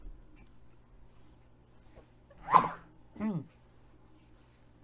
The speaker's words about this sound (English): I'm about to sneeze.